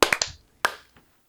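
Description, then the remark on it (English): A ragged burst of sharp hand claps made to sync audio after a 3, 2, 1 count: three quick, slightly out-of-step claps, then a louder single clap and a fainter straggler, with no talking. “clap sync. 3, 2, 1.”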